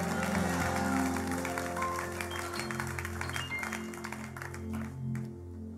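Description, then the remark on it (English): An audience claps together in a dense, steady burst over a sustained, humming musical drone, the applause thinning out and fading in the last second. “That's a good time to clap and say hallelujah.”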